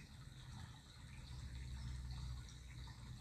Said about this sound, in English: Like this brook passing through pebbles, rocks, branches. Always moving forward. Not thinking about where the water will reach, will go.